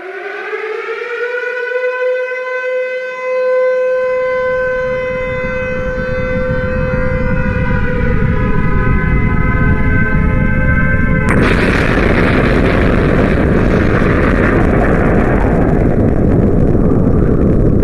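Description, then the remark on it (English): A wailing air-raid siren rises over a growing low rumble, then a huge nuclear explosion bursts in and roars on as a loud, sustained blast that swamps everything. No one speaks. “So we are going to blow up slugs and self-checkouts, and we are going to do this one with a nuclear explosion.”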